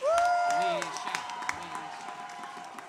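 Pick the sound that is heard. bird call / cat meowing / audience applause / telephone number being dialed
audience applause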